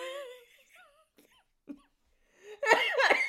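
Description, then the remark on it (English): Someone laughs with high, wavering voiced giggles, pauses, then breaks into two loud, harsh coughs near the end, the laughter dissolving into coughing. “You guys know I cough when I laugh.”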